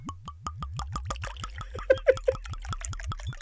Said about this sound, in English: I enjoyed the whiskey. So here we go. There we go. Ooh. Oh yeah, a little pour here. Let me get closer to the microphone. Cluck, cluck, cluck, cluck, cluck, cluck, cluck. Here we go.